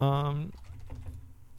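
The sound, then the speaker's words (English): Rapid clicks of typing on a computer keyboard follow a short, loud held vocal sound, continuing at a moderate level with a faint voice murmuring underneath. “I'm typing in episode 1000 One Piece.”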